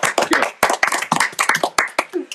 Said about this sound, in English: The first pod. Let's give a round of applause for the first episode.